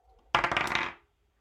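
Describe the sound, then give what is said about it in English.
A golden twenty-sided die, rolled for an athletics check, clatters across a table and lands on 10, a sudden sharp hit followed by a quick run of bright, rattling clicks that fade out within a second. No one speaks. “Go ahead and roll me an athletics check as these two horses thunder towards each other.”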